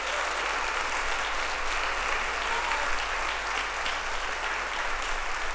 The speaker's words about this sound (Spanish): ¿Alguien puede darle un aplauso al Rey de Reyes esta mañana?